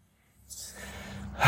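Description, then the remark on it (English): A slow, airy, deep conscious breath drawn in, followed by the start of a louder, fuller exhale at the end, with no talking. “One conscious one if you want. You might have took that one with me.”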